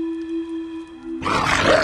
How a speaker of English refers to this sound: A bestial growl rent the silence. It was the sound that the thing had made when it lunged out of the cave at Gore. This time it was accompanied by a violent knocking on dried wood that was somehow more chilling than the moan, but only just.